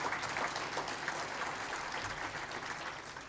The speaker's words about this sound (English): So let's once again give our sponsors a round of applause.